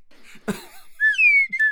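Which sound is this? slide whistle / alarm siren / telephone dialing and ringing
slide whistle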